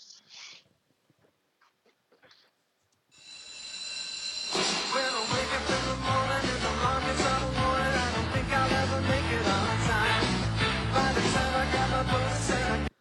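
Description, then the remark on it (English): The theme song of the TV sitcom Saved by the Bell bursts in after a few quiet seconds, swelling up and then playing loud and upbeat with a steady driving beat and bright, full band instrumentation. “She said Saved by the Bell, and that is correct. It is Saved by the Bell.”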